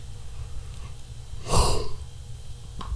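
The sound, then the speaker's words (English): A big yawn sounds once near the middle as a loud, breathy rush of air that quickly fades, over a low steady rumble. No one speaks. “Like, I get to the yawns, like the super yawns, where it just looks like Ghostface Killer from Scream.”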